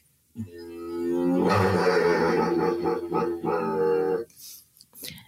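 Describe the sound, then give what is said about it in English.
A human voice imitates a kookaburra call: a loud, strained tone that breaks into a rapid, throaty series of pulsing hoots for about four seconds, ending in a breathy exhale. “then you also have yourselves the kookaburra, and you go.”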